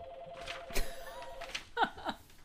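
A phone ringing faintly: a thin electronic ringtone with a steady sustained tone, then two quick bright chirping notes near the end, with no talking.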